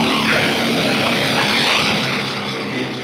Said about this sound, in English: It looks like a giant metal harpoon that runs on compressed air and uses water to bore through thick rock.